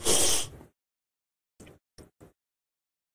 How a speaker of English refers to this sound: See, I told you I was going to sneeze.